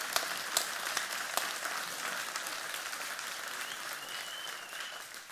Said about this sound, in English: You guys, can we give Jesus Christ a round of applause for what he's been doing and changing people's lives?